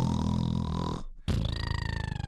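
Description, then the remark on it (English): A person fakes loud snoring: a long, rough, rattling inhale, a brief pause, then another drawn-out buzzing snore that pulses rhythmically. “I like how my snores are getting progressively longer.”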